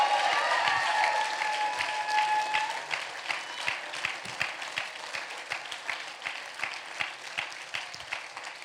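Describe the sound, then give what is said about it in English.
An audience in Alaska welcoming new church members breaks into loud, sustained applause, with some voices and cheers over the start, then the clapping thins into scattered, rhythmic hand claps as it winds down. “Come on, give them a warm, warm hand clap.”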